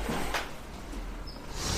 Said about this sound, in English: I need to close this door.